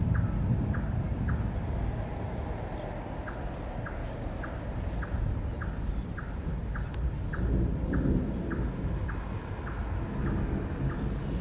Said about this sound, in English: don't think I had ever experienced a thunderstorm quite like the ones that you have here in Singapore. They have that amazing forked lightning, which I'd never seen before, which completely blew my mind.